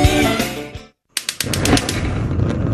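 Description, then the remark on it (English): Sugardale bacon, slow-smoked with applewood and hickory, sizzles on a griddle with a steady hiss and bursts of sharp crackling pops, coming in after a short tonal passage and a brief moment of silence. “Hear that? Sugardale Bacon's been making Saturday morning sizzle since 1920.”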